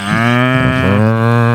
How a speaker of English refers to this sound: I also think I just heard a cow crossing. There's a cow crossing. They're bringing them in. Oh, they're bringing them in here. Are they cows or goats? I don't know. Sheep. They could be sheep.